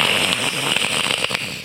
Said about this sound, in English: And suddenly there was thunder. And it started to pour heavy rain.